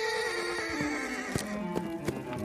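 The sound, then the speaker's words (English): Tucker, a black stallion, whinnies in a long, wavering neigh while hooves clip-clop in a few sharp, uneven knocks underneath. The sound is fairly loud, with no voices. “But of all her possessions and hobbies, Eloise's favorite was her horse, Tucker.”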